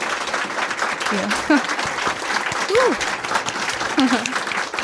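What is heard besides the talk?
audience round of applause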